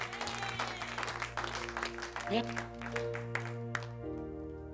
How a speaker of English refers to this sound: Clap for the Lord Jesus.